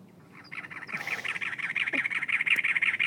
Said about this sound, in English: That's what a cactus wren sounds like. These cactus wrens must have been out to lunch because we didn't hear a call back.